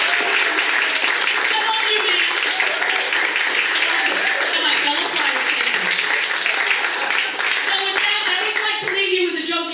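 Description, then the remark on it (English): An audience applauds a comedian steadily for about ten seconds, a dense, even wash of clapping with crowd voices and murmurs mixed through it, holding at a fairly constant loudness throughout. “Let's hear it for him again, please.”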